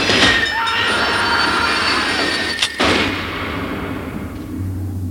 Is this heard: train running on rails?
yes